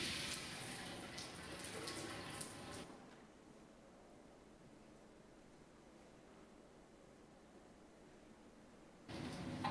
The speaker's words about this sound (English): Okay. Alexa, turn on morning shower. Okay. Alexa, turn off shower. Okay.